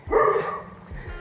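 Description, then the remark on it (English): A big Alsatian dog gives one loud, deep bark, followed by a couple of softer, lower woofs trailing off. “That's not him. That's the big Alsatian.”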